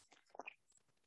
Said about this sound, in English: Pardon me. I need a sip of water.